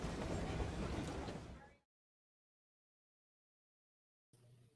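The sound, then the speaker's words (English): A loud rush of train wheels rolling and clattering over the rails for a couple of seconds, then a sudden cut to silence and a faint low hum at the end. “And I love the click and the clack of the rails going by.”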